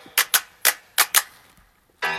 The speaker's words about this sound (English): Matter of fact, let's clap it up for Puma, man. Let's clap it up for Puma. We'll make it clap.